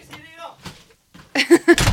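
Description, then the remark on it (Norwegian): A door slams shut loudly, a sharp heavy bang with a second thud right after, following a moment of voices talking. “Lukk døra da, buttheads.”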